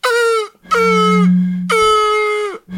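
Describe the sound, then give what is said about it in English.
Three loud, buzzy honks made as a mock mating call by blowing through a plastic straw pressed against the lips, each blast held about half a second, with a low droning hum beneath the middle ones. “It was a mating call. It was a straw on the lips.”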